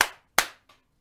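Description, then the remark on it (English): Hand claps: two sharp, loud claps in quick succession, followed by a fainter clap and a brief faint tap, with no talking. “Do a little clap for us.”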